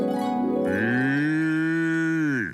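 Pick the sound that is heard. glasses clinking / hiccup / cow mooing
cow mooing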